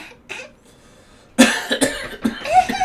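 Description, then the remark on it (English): After a brief quiet stretch, a person breaks into a loud fit of several harsh coughs in quick succession, rough and breathy, with no talking. “I just get told not to go every week because I have a cough.”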